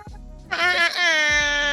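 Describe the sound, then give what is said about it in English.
A loud air horn blast kicks in after a brief low rumble, holding one steady, brassy, harmonic-rich tone for over a second with a short dip partway through. “Who is that over there with their air horn?”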